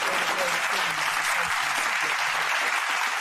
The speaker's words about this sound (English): So round of applause for them. Yeah, shout out to all them.